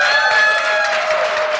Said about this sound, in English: Thank you very much, Andrew. Shall we give Andrew a round of applause?